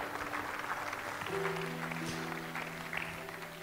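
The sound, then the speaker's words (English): A church audience claps steadily for Dr. Brooks in a dense, sustained round of applause lasting several seconds, with held keyboard or organ notes ringing softly beneath it. “Can we give Dr. Brooks a round of applause?”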